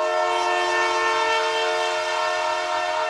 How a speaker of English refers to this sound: Welcome aboard this train here.